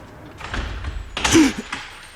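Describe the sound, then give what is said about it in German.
A house's front door opening: a scraping, rattling swing of the door in two broad bursts, the second louder with a low thunk, then a softer shuffle afterward as two people step out with quick footsteps. No one speaks. “Plötzlich öffnete sich die Haustür und zwei Personen kamen mit schnellen Schritten heraus.”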